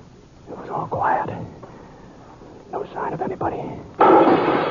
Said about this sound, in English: I drew fast and fired at the flash.